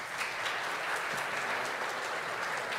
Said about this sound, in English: I want to just mention, that's a great clap, and I want you to do that one more time, but let's save it till the very end of our morning together. Would you do that? Thanks.